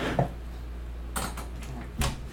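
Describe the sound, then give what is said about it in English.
A door being opened with a twist of its knob: a soft low thump, then a sharp latch-like rattle a second later, and another brief click and bump near the end, with no talking. “Opening door.”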